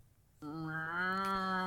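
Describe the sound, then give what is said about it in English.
A person imitates a cow with one long, droning moo that begins after a brief pause and swells slightly, fairly loud, with no talking around it. “If somebody else wants to talk, they moo.”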